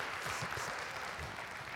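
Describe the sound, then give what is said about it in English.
A crowd claps steadily together in praise of a man, a dense wash of many hands applauding at moderate volume throughout, with no voices standing out. “Come on, give him a hand clap of praise in this house.”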